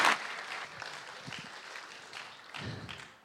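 An audience applauds a man for introducing himself to them that evening, a dense crackle of many hands clapping at a steady level that swells briefly at the start and again near the end.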